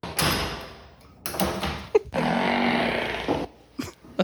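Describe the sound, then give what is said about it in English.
A series of loud, drawn-out farts in a single-toilet bathroom, three rumbling, sputtering bursts, the last and longest lasting over a second, with a few sharp knocks or clicks between and after them as the door is shut and locked. No one speaks. “Anyway, fart of the week. Here's the only contestant, so the automatic winner.”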